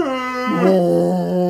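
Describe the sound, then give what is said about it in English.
A person's voice imitates a whale's wet bellow: one long, droning vocal tone rich in harmonics, its pitch dipping slightly midway and held at a steady loudness for over a second. “That's really hard to try and emulate a whale saying, do me.”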